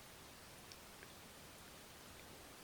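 Soft, steady rainfall hisses evenly in the background, faint, with a few tiny drop ticks scattered through it and no voices.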